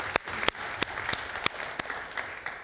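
A crowd applauds steadily, a dense patter of many hands clapping with a few sharper, louder claps standing out at irregular moments, with no voices over it.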